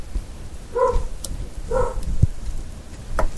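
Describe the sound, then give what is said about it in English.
A pet dog gives two short, tonal barks about a second apart, clear against a low background rumble with a few faint knocks and clicks. “What, the dog or me saying about dog. The treaty? Oh, no, my dog.”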